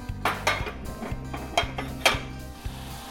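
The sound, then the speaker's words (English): A metal pot clanks and scrapes as it is set on a stove burner to be brought to a boil, with several sharp knocks over a steady low electrical hum. No one speaks. “Okay, I'm gonna bring this to a boil.”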